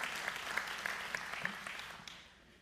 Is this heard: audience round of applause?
yes